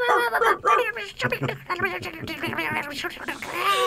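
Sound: dog barking and whimpering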